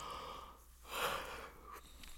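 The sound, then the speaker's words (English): A single drawn-out yawn, breathy and airy, swelling to a peak midway and then trailing off, fairly quiet with no talking. “Anyway, I apologize for the yawns, but I'm doing this.”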